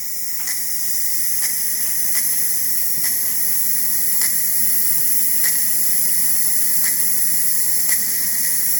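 A pressure cooker cooking a turkey breast hisses steadily as it builds pressure, a continuous airy rush with faint, evenly spaced ticks underneath, with no talking.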